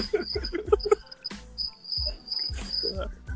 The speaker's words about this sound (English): Oh, you got to give them some sort of sound effect after that one. Fantasy Island and shit. Y'all hear the crickets?